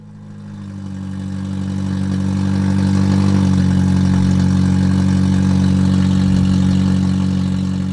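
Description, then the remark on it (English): A loud, rough car engine idles and then rises in a steady, throaty roar, its low rumble harsh and grinding like a motor running without a muffler, after a part was stolen from underneath the car; no voices. “That grinding, excessively loud motor makes your car sound like a vintage hot rod from the 1980s.”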